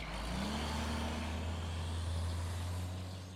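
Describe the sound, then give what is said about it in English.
A truck engine idles and rumbles steadily, a deep low hum with broad road noise layered over it, holding level for a few seconds before easing off slightly. “So I planned out what trail I was going to take, and packed my camping gear and my rifle for protection, and jumped in my truck.”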